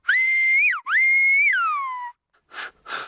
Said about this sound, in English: In Silbo, words and phrases are formed by varying the pitch of the whistle. There is, as you might guess, a trick to learning the proper finger-in-mouth technique.